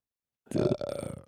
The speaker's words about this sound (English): Excuse my belch.